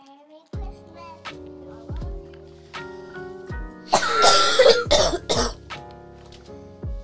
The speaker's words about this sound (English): Just so we can cough again, because I've been holding it in. I need to cough.